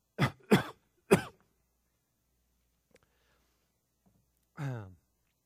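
coughing and throat clearing

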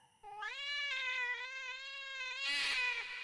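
cat screaming

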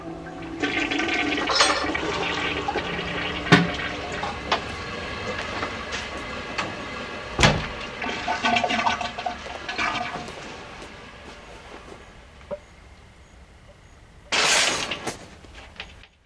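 toilet flushing

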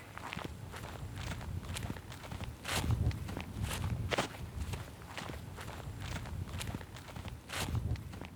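footsteps walking outdoors

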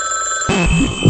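telephone ringing

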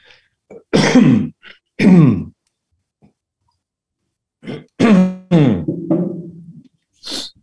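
throat clearing

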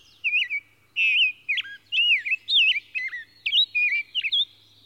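songbird singing

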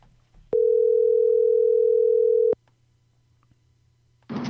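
telephone dial tone

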